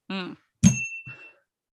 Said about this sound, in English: Well, the bell rang, so.